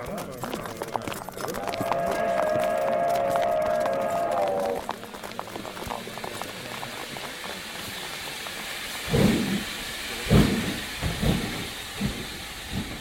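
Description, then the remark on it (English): A steam train bound for London pulls away: a long, shrill whistle blows over a steady hiss of steam, then heavy, slow chuffs start up and grow louder as the engine gets moving. “Everybody back on the train. We're about to head out to London.”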